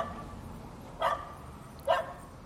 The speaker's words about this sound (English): Ah, oh man, there's a dog barking at me. It's the same cunt who's in the fucking car.